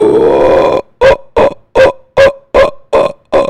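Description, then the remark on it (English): A person imitates a monkey's throaty call: one long rough guttural sound, then seven short, loud, evenly spaced grunting bursts with low, harsh resonance. “So it's like different tribes of monkeys chilling.”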